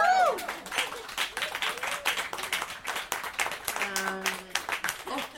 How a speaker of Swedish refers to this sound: Är det inte värt en applåd?